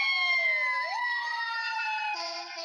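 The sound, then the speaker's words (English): An ambulance siren wails loudly and steadily nearby on the street across from the People Concerned, its tones sliding up and shifting as it passes, with a second siren tone joining near the end. “okay, next to my ambulance coming, so you may not be able to hear me.”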